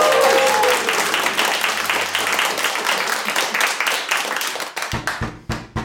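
A burst of audience applause, dense and loud, with many hands clapping together; a low sustained tone sits underneath at first, and the clapping thins into a few scattered claps at the end.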